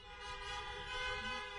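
Several car horns honk at once outdoors from vehicles in a parking lot on Easter Sunday morning, their steady overlapping tones blending into one sustained chorus that holds for the whole moment. No one speaks.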